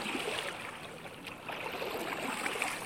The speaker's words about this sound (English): Back across the lake. Plip, plop.